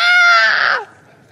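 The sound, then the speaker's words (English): A voice lets out a loud, high-pitched, shrill scream lasting under a second, mimicking a panicked shriek, then cuts off abruptly into quiet background noise. “A lot of people scream. Some of you men scream like little girls.”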